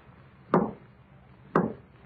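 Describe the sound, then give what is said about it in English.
Two heavy knocks on a wooden basement door, spaced about a second apart, each a sharp thud that fades quickly over a faint steady background hum. “And it's the basement door again.”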